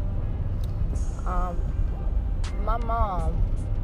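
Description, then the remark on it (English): Steady low rumble of tires on pavement fills the cabin of a moving car while the person speaking drives it, constant and fairly loud, with brief bits of voice surfacing over it. “So if you hear the road, that's just because I'm always in the car driving.”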